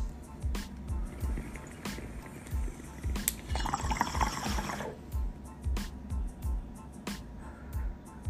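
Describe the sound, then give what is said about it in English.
A drink is poured into a glass for a toast for about a second and a half, a bright splashing trickle, with soft rhythmic low thumps and faint room noise throughout. “But we're gonna, you know, cheers to that growth with a little bit of cake mix. Cheers.”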